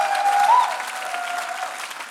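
A crowd claps and applauds steadily in a huge round of applause for the Lord, a dense wash of hand claps, with a faint whistle or cheer near the start and no speech over it.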